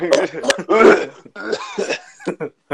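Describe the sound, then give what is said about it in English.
A voice imitates a harsh, raspy smoker's cough, the cough of a 53-year-old man who has been smoking a lot of weed: a string of wheezy, hacking bursts and throaty rasps over a few seconds, loud, with no words. “He's going to have that Fanoosh cough when he comes into the room.”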